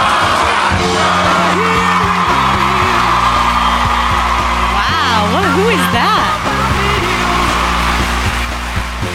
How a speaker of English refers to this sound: Wait for this crowd to die down. Wow, what a clip.